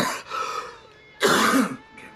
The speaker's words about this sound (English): Coughing's good. It opens up the capillaries, you know.